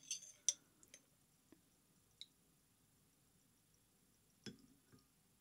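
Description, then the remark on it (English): A handful of light, scattered clinks and taps against glass as two maraschino cherries and a little juice are added to a cocktail glass, with a slightly fuller knock near the end. Quiet, with no talking. “Let's do two cherries just because. Maybe just a little bit of juice.”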